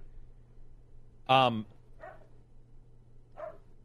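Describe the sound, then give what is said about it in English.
A single loud, sharp dog bark rings out, followed by two fainter, shorter yips or muffled sounds a moment apart against a low steady hum. “I was getting ready to talk, and he has that bark that just bothers me enough.”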